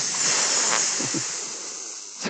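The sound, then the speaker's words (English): A person hisses the film title SSSS (seven S's in a row), a long, steady snake-like hiss, a bright airy "sss" that holds for about two seconds at an even loudness before cutting off, with a faint breathy murmur underneath. “Don't say it, hiss it, in parentheses.”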